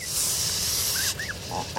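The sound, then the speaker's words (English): An adult Canada goose gives a sustained, breathy hiss lasting about a second, fairly loud, followed by a few soft, high chirping peeps. “The adult's hiss lets you know that you should give the geese and their goslings some space.”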